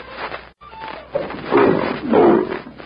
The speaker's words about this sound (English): Hey, Lion! Get back, Wong.